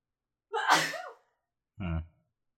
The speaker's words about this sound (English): Yeah, that was her sneezing in the background.